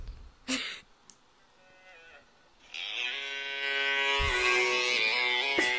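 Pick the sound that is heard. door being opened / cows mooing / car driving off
cows mooing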